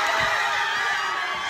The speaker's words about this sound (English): Obviously, she got in. Everyone's screaming and hugging. The entire scene is pure joy.